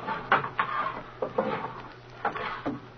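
Drawers are pushed shut several times, each a short scraping slide ending in a soft wooden knock, coming in irregular pairs at moderate loudness with no voices.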